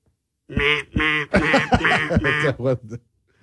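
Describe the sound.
A person's voice imitates a duck, making a quick run of about six nasal quacks in a row, loud, ending in a brief chuckle.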